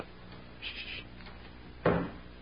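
A front door opens indoors with a brief scraping rattle, followed by a single sharp clunk of the latch and a short resonant decay against a quiet background hum.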